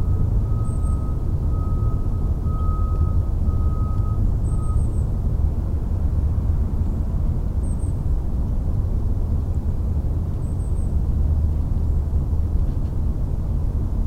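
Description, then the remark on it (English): An outdoor field recording among trees and tombstones, filled with a steady, heavy low rumble of passing trucks and wind, with a faint tone early on and a few small, high bird chirps recurring. “Today somebody made a stencil of the birds and the trees and the trucks and the winds and the tombstones.”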